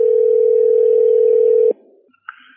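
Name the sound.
telephone dial tone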